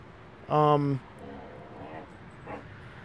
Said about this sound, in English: And my dogs are going at it there.